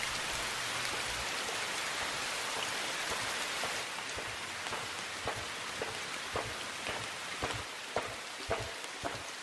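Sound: rain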